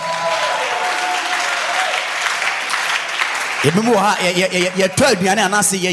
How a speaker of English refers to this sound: Can you give God a clap?